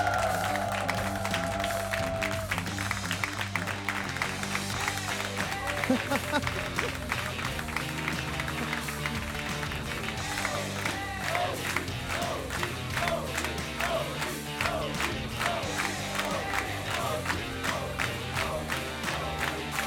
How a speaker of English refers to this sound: I think we're all here to do something that I've been waiting for all day to do, which is give a big round of applause to OG, your major champions. Bring them in.